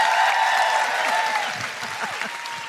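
Sustained applause from an audience fills the room, a dense steady patter of many hands clapping that stays loud throughout and eases only slightly toward the end.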